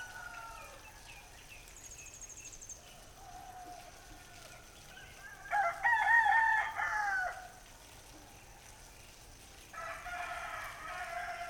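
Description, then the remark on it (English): A rooster crows once, a loud harmonic call lasting about two seconds, then starts another crow near the end over a steady, hissy outdoor background. “I found corroborating evidence of this even in the crowing of the cock.”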